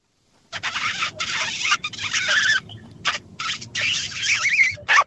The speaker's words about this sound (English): You reckon you can hold a radio kiss for as long as possible?